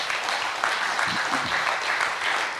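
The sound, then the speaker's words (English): A crowd applauds steadily, a dense, even wash of many hands clapping at once that holds at a constant loudness throughout, with a faint murmur of voices underneath. “Let's clap it up, though.”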